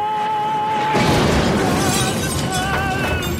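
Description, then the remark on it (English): A singer's held note sounds alone in a film scene, then a car slams into a tree and explodes in a loud, sustained roar of noise and debris, the note resolving as it explodes, with tonal notes ringing through it. “And then when it explodes, you resolve the note.”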